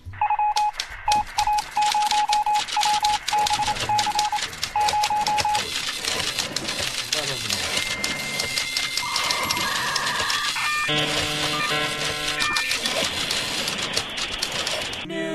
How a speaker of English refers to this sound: I think someone's phone was ringing.